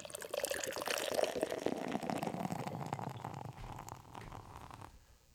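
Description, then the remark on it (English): Austrian Steigel's Zitron Radler beer glugs and fizzes steadily into a glass for several seconds, the foamy pour loud, rising in pitch slightly before tapering off at the end. “First beer is poured out, and Steigel's Zitron Radler is jumping out of our glass here.”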